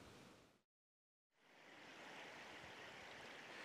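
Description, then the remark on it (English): Water rushes steadily through the millrace at Burrishill, a channel connecting Loch Fia and Loch Furness, a dense, continuous roar that cuts out briefly near the start before resuming at full strength. No one speaks. “Now we're here at the Millrace at Burrishill. The sound of running water here brings me back to the Shannon at Limerick,”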